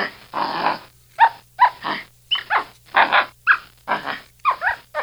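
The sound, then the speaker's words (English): Capuchin monkey calls: a loud run of about eight chattering, squealing bursts with short pauses between them, some rising into thin whistly squeaks, with no talking. “That is the capuchin monkey.”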